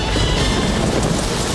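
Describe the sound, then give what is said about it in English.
Steady, dense hiss of rain falling, an even wash of noise with no voices and no breaks across the short stretch. “will have to wait until after it rains?”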